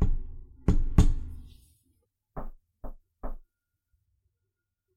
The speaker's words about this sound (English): And you head back to your sister's house. And I do my secret little knock again.